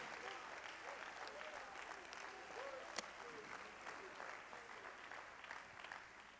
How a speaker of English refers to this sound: Let's all clap our hands to the Lord for a moment, will you? Let's praise Him.